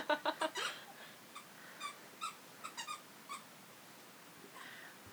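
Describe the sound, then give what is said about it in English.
A squeaky toy squeaks in a quick burst of four or five high, piping squeals, then gives scattered single and double squeaks at uneven intervals as a female dog chews it at home, moderately quiet. “And my dog is enjoying her squeaky toy, so we will have to see about editing that out.”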